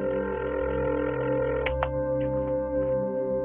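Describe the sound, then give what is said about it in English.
A telephone rings once with a steady electronic tone, then a couple of sharp clicks as the receiver is lifted. No one speaks. “The phone only rang once before he picked up.”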